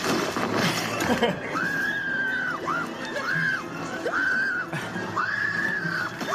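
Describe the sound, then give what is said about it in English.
A woman, an actress in a film clip, lets out a series of shrill, sustained horror-movie screams, four or five in quick succession, each rising and falling, over a busy, noisy background. “Can we just play her scream again, just to haunt our dreams?”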